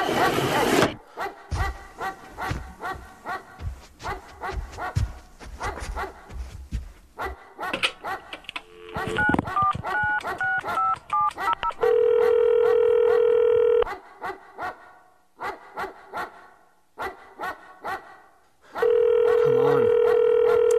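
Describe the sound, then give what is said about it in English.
Touch-tone dialing beeps give way to a loud, steady telephone ring in two long bursts, while a dog barks repeatedly throughout. “Answer the freaking phone.”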